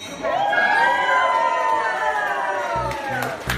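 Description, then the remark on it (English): People at a cooking class at the Civic Kitchen in San Francisco erupt in loud, sustained cheering and excited shouts at the big reveal of a timpano, voices rising and overlapping in high-pitched whoops, with a few scattered claps near the end. “Listen and hear to the crowd's reaction at the big reveal.”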